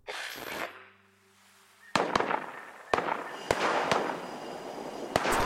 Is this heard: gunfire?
yes